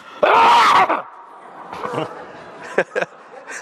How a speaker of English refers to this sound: All right, I'm going to clear my throat. It's going to be really loud.